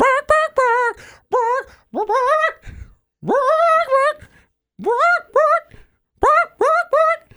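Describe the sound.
A person imitates a chicken, producing a run of short, loud, pitched clucks and bawks in uneven bursts, with no other talking.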